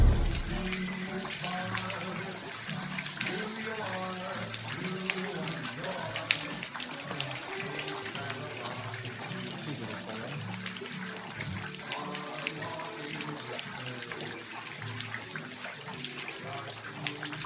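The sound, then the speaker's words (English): Steady rushing, splashing water runs continuously and fairly loud throughout as a flood pours through the Cure Thrift Shop, with indistinct voices murmuring underneath. “Rivers were running through the shop. It was underwater.”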